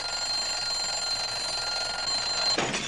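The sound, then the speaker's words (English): An alarm clock rings loudly and continuously, a dense metallic clatter with a shrill steady tone, ending in a brief burst of noise as the clock is meant to break, a film sound effect. No voices are present. “Okay, the effect was that the clock was supposed to break, but”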